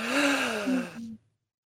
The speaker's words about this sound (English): Do a breathing exercise. Yeah, everyone. All right, listen. One, two, three, and in.